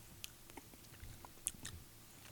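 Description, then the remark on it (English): Someone chewing a hot pepper, with a handful of soft, irregular crunchy bites and wet mouth clicks over a quiet background, no talking. “Are you still chewing it?”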